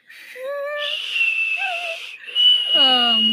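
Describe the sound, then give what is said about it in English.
Someone attempts a short whistled tune for the first time: a breathy, airy high tone runs through it, with a few brief stepped notes that sound partly hummed or voiced. “Oh shit, I've never whistled before. That was really good.”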